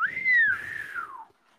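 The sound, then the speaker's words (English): A slide whistle gives one smooth tone that climbs slightly, then glides steadily downward over about a second before cutting off, fairly loud with no talking. “Nobody hit the slide whistle for me.”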